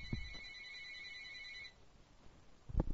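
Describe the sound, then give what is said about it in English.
An electronic phone ring with two steady high tones sounds clearly for under two seconds, then stops, followed by a couple of soft low thumps. “Yeah, phone's ringing. You want to get that?”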